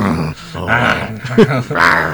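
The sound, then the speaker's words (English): A person growls into a microphone, making several rough, throaty snarls in quick succession that imitate an animal, loud and harsh with brief pauses between bursts. “Let's growl into the microphone.”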